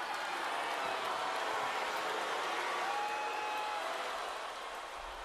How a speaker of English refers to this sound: So they're booing him there.